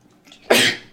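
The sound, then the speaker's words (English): A single sharp sneeze bursts out after a brief, faint intake of breath, loud and breathy with a quick fade and no talking. “Stop laughing at me, I'm being serious. Bless you.”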